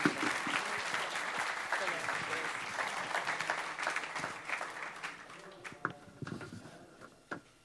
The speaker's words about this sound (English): So let's give her a fantastic round of applause, please.